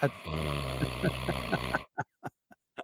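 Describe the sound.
A person imitates a loud, rasping snore: one long, rattling drawn-out breath, then a few short snorting puffs trailing off in quick succession.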